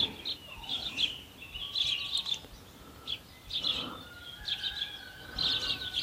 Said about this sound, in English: I can just see, I'm right at the other end of the garden, but I can just see all the sparrows dropping down from the tree above my studio.